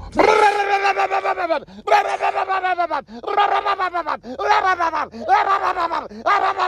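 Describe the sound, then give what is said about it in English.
A man's voice imitates a truck engine running badly on diesel fuel it is not supposed to have, with about six loud, gravelly, rasping bursts in a rough, uneven rhythm, each one sagging in pitch before the next starts. “If you've never heard a truck with diesel in it that's not supposed to have diesel, let me help you for a second.”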